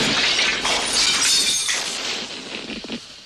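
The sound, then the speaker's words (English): A small LC Wide film camera, which keeps leaving its LED light on, is given a little bash to turn the LED off, producing a loud, clattery crash with rattling and scraping that lasts a few seconds before trailing off into a few lighter knocks. No one speaks. “And I brought the other three, LC Wide, which keeps leaving the LED light on unless I give it a little bash to turn it off.”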